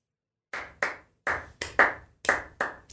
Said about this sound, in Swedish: De klappar händer, hör jag. Men det är liksom, det är så låg volym på handklappningen. Så jag vet inte vad folk tycker.